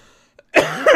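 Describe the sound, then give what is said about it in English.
A single loud cough bursts out after a brief quiet pause, harsh and breathy, with a second rasping push at its end; no talking is heard. “God, I keep coughing and laughing.”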